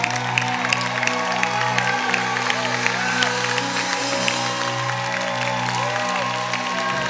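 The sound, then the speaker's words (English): An audience at a Christian worship service claps steadily and loudly for several seconds, a dense wash of many hands, over sustained low organ-like tones in the background. “Go ahead, clap the best you can to do.”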